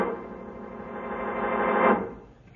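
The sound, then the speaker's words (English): A weak radio distress signal, a call for help, crackles through steady static, with thin sustained tones in the hiss that swell in loudness, then fade away near the end. “Because I wanted you to listen to that signal. If I'm not mistaken, it's a call for help.”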